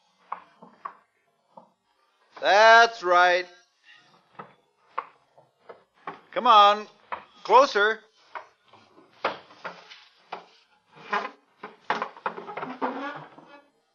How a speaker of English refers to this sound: bring your chair to the door. Oh, he's doing it. That's a good boy. Bring it right up to the door.